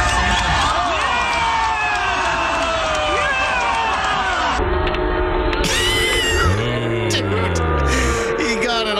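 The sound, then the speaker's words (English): A crowd reacts loudly: a dense, continuous roar of many overlapping voices shouting and cheering, with rising and falling yells and shrieks at a steady high level throughout, in audio from a video in which a passenger in a vehicle vomits onto the driver. “Well, we have some audio, too, if you can hear the crowd audibly.”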